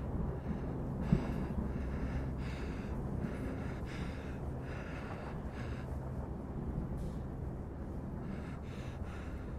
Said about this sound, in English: You're anxious. Lean forward, head in hands, breathing heavy.